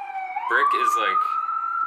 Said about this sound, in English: Alarm phone buzzing.